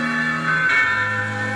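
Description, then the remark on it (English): A distant church bell tolls with a rich, sustained ring of layered tones, struck again partway through so the hum swells briefly before settling into a steady drone. No voices. “The tolling of the church bell in the distance made her break away with a start.”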